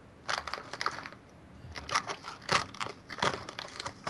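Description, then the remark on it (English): Crisp, crackly crunching of people munching on snacks, a series of irregular bursts coming in quick clusters with brief pauses between, fairly soft overall and with no talking. “All right, I can do that as we're all crunching and munching.”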